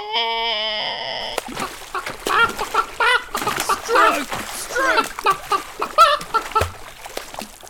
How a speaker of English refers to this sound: Oh, a chicken. Did you say chicken?